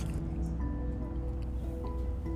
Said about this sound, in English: Take a sip of my coffee.